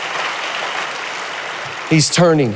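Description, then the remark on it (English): An audience in a church claps steadily in a dense, even wash of applause that carries on loudly for about two seconds before a man's voice breaks in over it. “Everybody else needs to clap right now.”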